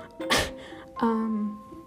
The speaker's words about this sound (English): I gotta burp. Excuse me, I'm a very informal person.